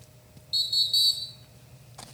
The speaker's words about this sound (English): There we go. It's like an NBA whistle. It's late sometimes.